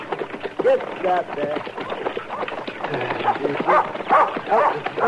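A dog barks and yips in quick, excited bursts, fairly loud, the sharp calls piling up almost without pause over a busy, cluttered background.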